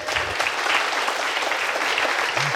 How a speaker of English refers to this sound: Cue the clapping.